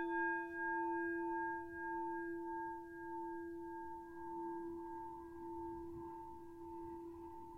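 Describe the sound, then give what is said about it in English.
A meditation bell, rung to begin a meditation session, rings with a long, resonant, shimmering tone that hangs in the air, its hum swelling again partway through before slowly fading. No one speaks. “I'm going to start with three sounds of the bell and the usual settling in introduction.”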